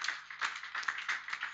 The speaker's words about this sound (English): If you are clapping, the Lord will bless you. May God so bless you.